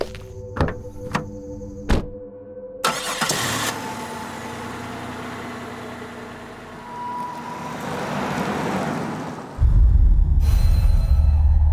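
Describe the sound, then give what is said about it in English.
A few heavy door thunks as people climb back into a truck, then its engine turns over and rumbles, idling steadily before revving and growling louder and deeper as it turns around on a road by a forest to head back, with no talking. “You all walk back, kind of keeping an eye on the forest around you, being a lot more aware of all the different noises, or lack of noises, as you all climb back into the truck to flip it around and head back towards New Jerusalem.”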